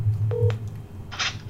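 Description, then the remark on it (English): A single short telephone keypad tone beeps once while a phone call is being dialed, followed by a brief hissy burst, over a steady low hum with no voices. “I'm gonna make a phone call, and tell me if you can hear that through the headphones.”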